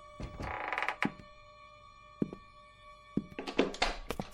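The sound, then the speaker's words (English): A door lock being picked with a lockpick: bursts of metallic rattling and scraping, separated by a few sharp clicks and thunks, with a faint steady ringing tone underneath and no voices. “Somebody's trying to jimmy the door.”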